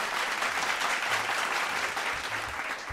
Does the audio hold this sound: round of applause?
yes